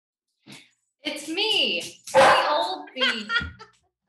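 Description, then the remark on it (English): A dog barks and yelps in a few short, loud bursts over about three seconds, with no clear speech around it. “Let's take that again without the dog.”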